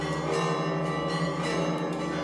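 Loud church bells of the Sepulchre ring continuously, signalling that it is time for one group to take its watch; their rich metallic tones overlap into a dense, sustained clang with no pauses and no voices.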